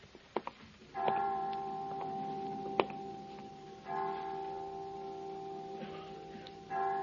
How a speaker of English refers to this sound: Well, 5 o'clock. I didn't know the children's home had chimes.